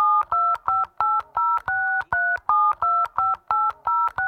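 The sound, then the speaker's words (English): A rapid string of electronic keypad beeps from a phone's calculator, about a dozen short two-tone presses in quick, slightly uneven succession, clear with no one speaking. “use this calculator on my phone.”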